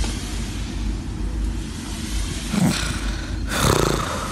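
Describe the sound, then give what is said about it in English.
Wind turbines spinning at a wind farm on hills in Ireland: a steady, deep rumbling roar with two louder whooshing swells near the end, no voices. “You may have seen the windmills spinning on the hills, or maybe you live close to a wind farm. Have a listen to what they sound like.”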